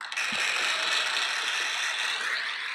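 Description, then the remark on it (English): A crunchy, crackling burst of applause-like noise: dense, rapid clicks and rattles sustained at a steady, fairly loud level for under three seconds, with no voices. “It was meant to be applause.”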